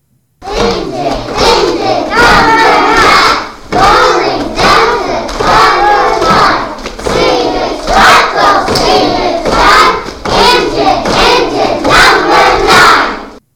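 A pre-K class of young children chants the rhyme "Engine Engine Number 9" together in loud, rhythmic unison while a drum keeps a steady, even beat underneath from start to finish.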